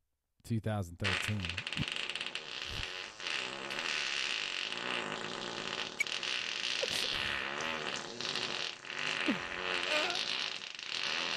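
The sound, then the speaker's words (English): A long, loud fart noise: a low, tonal blurt at the start gives way to a sustained, raspy, sputtering buzz that drags on for roughly ten seconds without a break. “Oh, is this fart?”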